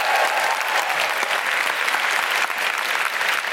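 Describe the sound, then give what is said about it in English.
Sustained audience applause for the composers of a show, a dense, steady wash of many hands clapping at once, loud and even throughout with no voices standing out. “Big round of applause for all the composers.”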